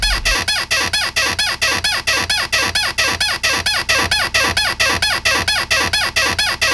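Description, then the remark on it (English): A loud squeaking audio sample repeats in a fast, steady rhythm, roughly four squeaks per second, looping evenly throughout with no voices. “All right, and there's only one to go, Squeaky.”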